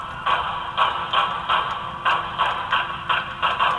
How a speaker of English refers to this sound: There was something else police noticed from the sound of the shots fired, and it took investigators by surprise. There's two different pitches of gunfire heard. Listen.